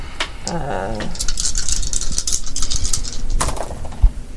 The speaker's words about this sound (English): Roll three dice.